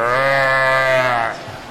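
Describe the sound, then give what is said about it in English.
A person voices a single drawn-out, angry cow bellow, loud, holding a strained, buzzy tone for over a second before it cuts off. “Oh, there was more than a moo. There was probably a beller.”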